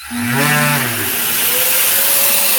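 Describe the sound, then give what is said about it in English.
A Surf Prep 3x4 industrial sander motor whirs for a couple of seconds, its droning pitch wavering and bending before settling into a steady whine over a constant airy hiss, fairly loud, while getting ready to sand cabinet doors. “Let me make sure my sanding stuff is.”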